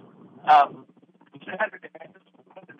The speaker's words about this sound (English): Okay, …, you are breaking up.